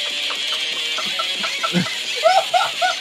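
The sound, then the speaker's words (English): A parrot makes a run of short, warbling squawks and chirps, some almost laugh-like, rising in strength toward the end over a steady background hiss. “How are they getting the parrot to make these noises?”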